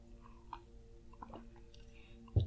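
Quiet sounds of someone sipping coffee: soft mouth noises and faint slurps, a few small clicks, then a low thump like a mug being set down near the end.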